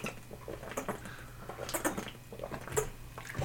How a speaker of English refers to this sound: Water break. A little H2O.